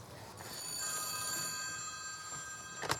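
A telephone rings with a steady electronic trill, its bright tones sustained through most of the moment, moderately loud with no voices, ending with a brief clack near the end; it is a call from a grandson in the early morning hours.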